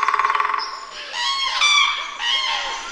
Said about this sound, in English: Our last word this week, actually a sound, almost going back to where we started this week with the sound of bird song. Here it is.